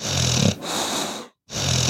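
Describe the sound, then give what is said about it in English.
Sleeping puppies snore in steady, raspy breaths, a couple of drawn-out wheezy snores broken by a brief silent pause, with no talking. “Yes, the puppies have fallen asleep,”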